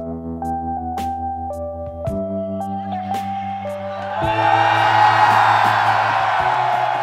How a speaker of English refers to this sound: It's like if people from all over the United States and Mexico, full of anger, were to travel to the border between El Paso and Juarez to sit in some bleachers and face off, both shouting insults and screaming, "I'm better than you."